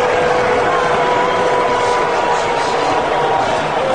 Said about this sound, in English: mixed reaction there. You can hear some in the crowd booing him and even chants of lock him up.